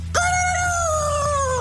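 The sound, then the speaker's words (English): A voice imitates a rooster's crow: one long, high, sustained cry that starts abruptly and slowly drifts downward in pitch, held for about a second and a half over a low background hum. “One morning, the three witches awoke early to the sound of their rooster crowing outside.”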